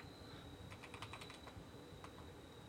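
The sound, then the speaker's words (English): A quick burst of computer keyboard typing as someone types in a new announcement, with a cluster of fast keystrokes followed by a couple of isolated taps, fairly quiet over a steady background hum. “Oh, I see you typing in the new thing that I'm going to be announcing.”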